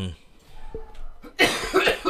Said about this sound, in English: if you don't stop corona coughing into my goddamn. Do I need to cut this part out? You all right? I ain't coughing into the mic.